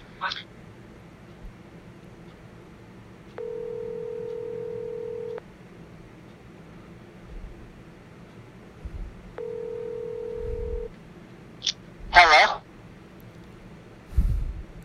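A phone call being placed: two steady, low electronic ringback tones, each about two seconds long with a pause between, followed by a few brief clicks and rustles.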